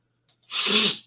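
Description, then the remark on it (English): A single sharp, breathy sniffle into a microphone bursts out after a brief silence, loud and hissy for about half a second before cutting off. No one speaks. “I say as I get my mic to sniffle.”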